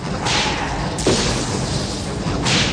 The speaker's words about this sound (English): Oh yeah, I always love these arrows. Just explode. Yeah. Now we get some real fireworks here.